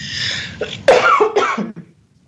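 A person coughs several times in quick succession, fairly loud, the harsh bursts tapering off into quiet at the end.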